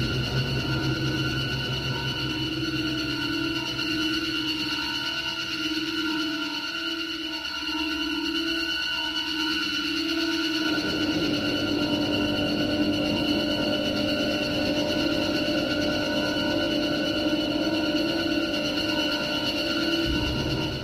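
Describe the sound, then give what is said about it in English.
A sustained, screeching drone of music from the video game Manhunt, heard on a level when enemies know the player is there and are looking for them, holds several steady high tones for the whole stretch, loud and unbroken, while a lower humming layer shifts texture about halfway through. “Yeah, just a one drone note of a screech.”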